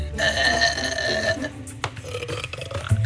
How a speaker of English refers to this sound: Well, I've kind of always known that I was able to burp loud. Ever since I was a little girl, even growing up, everyone was, they were so loud.